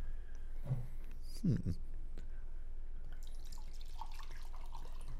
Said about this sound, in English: You can pour yourself first. Pour yourself first.